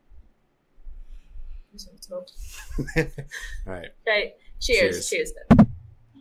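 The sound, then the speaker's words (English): A drink can cracks open with one sharp, crisp pop near the end, after a few seconds of quiet voices and soft handling noises. “Let me crack it open.”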